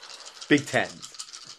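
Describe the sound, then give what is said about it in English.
Dice rattle and clatter in a continuous skittering rush, with two louder bursts of knocking in the middle as they tumble, and a brief voice sounding over the noise. “I need order dice.”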